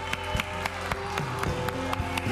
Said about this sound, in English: And we can't end with an applause like that. Let's give God a really big applause.